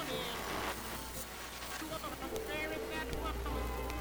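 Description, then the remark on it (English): Steady rain hisses continuously across the whole stretch, a dense wash of patter with faint muffled voice-like tones drifting underneath, heard as a door is thrown open and a man and his dogs go out into it. “He nodded, more to himself than to Jonah, and his dogs followed him into the rain as he threw open the door.”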